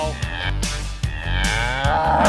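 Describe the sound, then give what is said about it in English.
A cow moos in a long, loud, drawn-out low bellow that fills the whole moment, clear with no one talking over it. “You should ask him now before he plugs the cow.”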